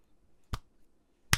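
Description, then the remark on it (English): Two sharp hand claps in front of a person's face, made to sync up audio for a video, separated by nearly a second, each a crisp loud crack standing alone against near silence, the second slightly louder than the first. “One big clap in front of your face.”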